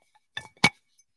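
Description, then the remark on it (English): Two sharp glassy clinks in quick succession, the second louder and fuller, as a glass bottle with a rubber seal is handled. “Wow, glass bottle.”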